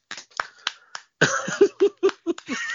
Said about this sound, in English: Oh, that, you guys didn't have to clap for me. Oh, thanks, man. That's so nice. You already have a clapping ovation for the first episode? Holy crap.